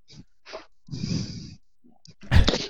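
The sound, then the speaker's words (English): Breathing right into a microphone: short breathy puffs, then a long, rough exhale, and finally a loud, harsh gust that bursts and distorts. No talking. “I mean, but still, move your you mic are breathing. A little. Yeah, you're breathing.”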